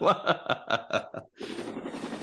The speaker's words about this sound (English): Helicopter whirling.